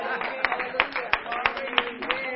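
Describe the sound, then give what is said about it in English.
Scattered, uneven claps from an audience ring out over a low murmur of voices, a handful of sharp hand strikes spread across a couple of seconds at moderate loudness. “You need to clap.”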